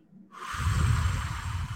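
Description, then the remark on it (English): A strong exhale as a deep cleansing breath, pushing out as much air as possible in one long, breathy rush, steady and forceful with a rough low rumble underneath, lasting over a second with no talking. “Again, by breathing out as much air as you can.”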